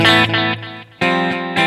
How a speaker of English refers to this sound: So that's what a delay is or an echo.